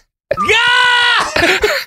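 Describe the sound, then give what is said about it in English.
A human voice imitates an air raid siren: a loud wail that sweeps upward, holds a steady high pitch for about a second, then breaks off into ragged vocal sounds. “Oh, that was a good air raid siren.”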